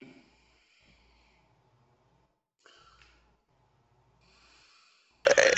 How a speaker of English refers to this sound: Serious question. He's just fucking snoring. Holy shit. He's snoring. Who's snoring?